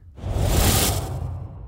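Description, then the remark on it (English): A fluttery whoosh sweeps in sharply, swells to a bright, airy peak, then trails off with a rapid rumbling flutter underneath, with no voices. “That one sounds fluttery, so flutter whoosh.”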